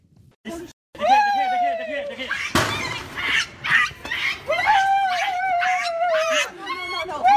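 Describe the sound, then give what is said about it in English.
A dog howls in two long, wavering cries, loud and sustained, with a sharp bang and scuffling noise between them, in video footage of animal rights activists throwing a homeless man to the ground and taking his dog. “What you're going to see here is a video of animal rights activists throwing a homeless man to the ground and stealing his dog.”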